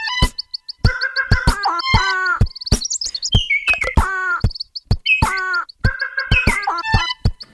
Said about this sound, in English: The next one is the lesser Vasa parrot. He finishes up with the Madagascar long-eared owl, the red-fronted quaw, and the Sayumanga sunbird. Beast mode.